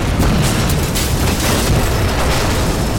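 An explosion tears open a stone ceiling and blows in the main entry of the Resistance's hold, roaring on as a dense, continuous rumble, heavy in the low end, with crackling stone debris layered through it for the whole stretch and no voices.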